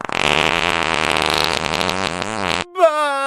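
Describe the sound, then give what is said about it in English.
A long, loud, buzzy fart noise from a novelty farting animal toy in a box set, wobbling in pitch for a couple of seconds, then cutting off into a brief squeaky honk at the end. No one speaks. “A 400 Farting Animals Collection box set to celebrate National Fart Cloud Day.”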